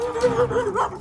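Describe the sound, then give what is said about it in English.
A rottweiler that is aggressive towards people barks aggressively while trying to attack and get at them: a fairly loud burst of strained, whining vocalizing that rises and falls continuously for about a second, with no one talking. “He's trying to attack. He's trying to get at them.”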